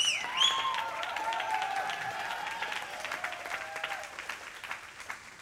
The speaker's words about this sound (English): All will clap. Only thankful people will stand in the position of sonship and daughtership. How many clapping hands?